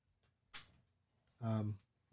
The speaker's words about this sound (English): Oh, you busted through the door.